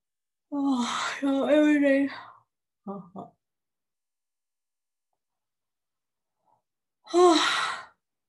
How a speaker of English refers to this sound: You all make me yawn.